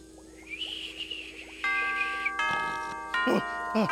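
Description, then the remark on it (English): A clock bell tolls in several loud, resonant strikes, each ringing on and overlapping the next, over a faint background of other sounds. “It's the clock. It's the toll of the first bell”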